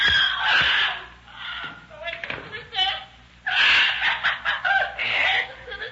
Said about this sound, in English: Now for you, you squawking bird. Go ahead, talk your head off.